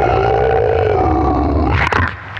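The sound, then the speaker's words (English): A person loudly imitates a roar, one sustained, throaty bellow that lasts about two seconds, then breaks off into a short harsh burst. “I am Falcor, hear me, roar”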